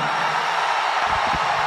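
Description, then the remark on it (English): A large wrestling crowd in South Carolina roars for Drew McIntyre with screams and cheers in a dense, steady wash of noise that holds loud for the whole moment, with no single voice standing out. “If you want Drew McIntyre to tear apart the bloodline right now, let me hear you scream.”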